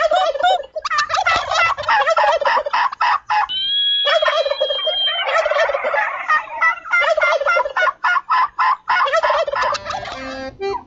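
A turkey gobbles in rapid, bouncing bursts over a polka song, the choppy warbling broken midway by a steadier, held tone before the quick gobbles resume, loud and rhythmic.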